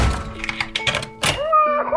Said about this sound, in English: I just put it on, lock the door, and now I don't have to worry about getting them to sleep.